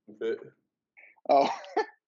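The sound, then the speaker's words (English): Loud bursts of coughing and throat clearing, with two or three rough, voiced hacks separated by a short pause, the last one longer and straining. “No, I was just laughing, coughing.”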